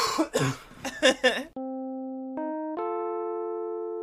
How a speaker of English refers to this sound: I'm leaving that cough in there. Well, you did with my last one. That was an accident.